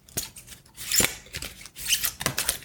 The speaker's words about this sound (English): As I shuffle the cards, set an intention.